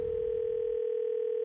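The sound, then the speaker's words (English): A steady, continuous telephone dial tone sound effect hums at an even pitch for the whole moment, with a bit of low rumble fading out partway through. No voices are present. “Don't ever answer your phone. It could be Freddie Mac calling to check his facts.”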